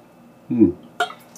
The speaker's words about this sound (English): Taking a drink out of my lovely water.